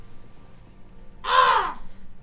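A single harsh caw from a crow sitting in a window rings out, loud and rasping, lasting under a second against a quiet, faintly humming background.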